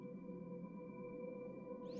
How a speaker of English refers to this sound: Music, healing frequencies. As you can tell, beautiful souls, I have this lovely whale meditation, 432 hertz frequencies on in the background.